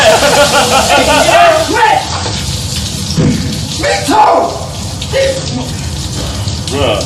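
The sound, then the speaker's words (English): Water splashes and pours heavily in a loud, sustained rush as a whole bucket of water is dumped on a man, with muffled voices and other noise mixed in throughout. “He dumps the whole bucket on the dude and was like, fuck this, man.”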